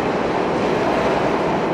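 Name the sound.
subway train passing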